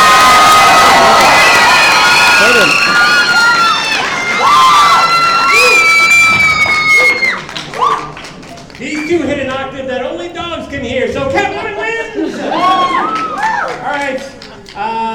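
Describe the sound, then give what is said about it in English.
A live crowd erupts in loud cheering, whoops and high shouts for several seconds, with some clapping mixed in, voting for Catwoman over Black Cat, before settling into a noisy babble of many voices talking at once. “If it's Catwoman, applaud now.”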